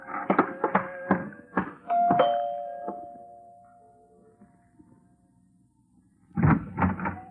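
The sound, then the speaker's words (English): Someone hurries to a door and opens it: a quick run of sharp knocks and thumps, a bright ringing tone that slowly fades, then a quiet pause before a final cluster of heavy bumps. No voices. “I hastened to the door.”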